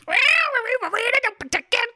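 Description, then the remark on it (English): A person imitates a cat with a long, rising-and-falling vocal meow, followed by a few shorter choppy mews, fairly loud with no other sounds. “So we will instead fill the time with 3.5 uninterrupted minutes of cat noises and wolfman noises and jazz scat.”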